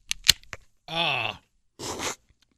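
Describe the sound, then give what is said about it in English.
A drink can is popped open with a few sharp metallic clicks, followed by a brief voiced groan-like sound and then a short burst of fizzing hiss as the drink foams. “So I'm going to, it's in a can, let me pop it open.”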